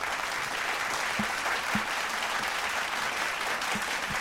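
Steady applause from a crowd for the performances, a dense, even wash of many hands clapping at once that keeps going at the same level for the whole clip, with no voices standing out.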